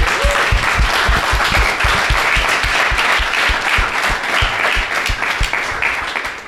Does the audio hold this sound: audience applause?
yes